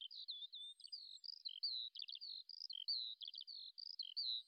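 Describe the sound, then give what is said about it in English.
A bird sings continuously in the trees above Crest Farm at Passchendaele, with bright, rapid warbling phrases and quick trills, clear, with no voices or other sounds around it. “Life moved on, and birds sing in the trees above Crest Farm.”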